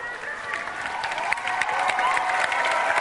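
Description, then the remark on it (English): A crowd applauds steadily, dense clapping holding an even volume throughout, with cheers and shouts mixed into the noise. “Clap for that.”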